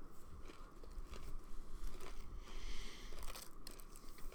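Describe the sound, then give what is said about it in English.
Someone bites into a battered, deep-fried Oreo covered in powdered sugar and chews, with soft crunching and crackling bursts repeating steadily over a few seconds, fairly quiet and with no talking. “They are deep fried... battered and deep fried Oreos and Rice Krispie treats, and they've been covered in powdered sugar.”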